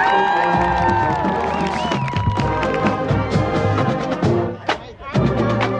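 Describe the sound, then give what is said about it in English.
A large community crowd packing the bleachers cheers and whoops loudly and continuously at a Saturday send-off for a marching band, with shouting voices and high yells rising over a dense wall of noise, briefly dipping near the end before surging again. “Is this like a level one playoff game or a marching band show? This is crazy. Look at this crowd.”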